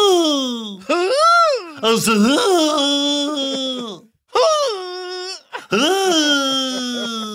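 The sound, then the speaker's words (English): A voice imitates JD's fall noise, a dramatic falling wail, with long, pitch-sliding cries that swoop up and then drop low, broken by a few short pauses, loud and strained throughout. “By the way, that was the JD fall noise.”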